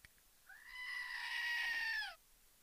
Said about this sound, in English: Did you hear it? Did you hear the goat? Oh, I just did a goat scream.